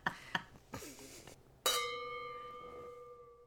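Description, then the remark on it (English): Wine glasses of Pinot clink in a toast: a couple of light taps, then one bright clink whose clear ringing tone hangs and slowly fades for nearly two seconds. “So on that note, let's cheers. Oh, thank God that didn't break.”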